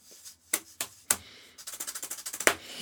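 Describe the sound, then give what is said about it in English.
Drum played with Dreamcatchers Headhunters brushes rather than sticks: a few separate soft, swishy strikes, then a quick, even run of about a dozen light taps ending on a sharper accented hit. No voices. “We'll hear that these are brushes, not sticks.”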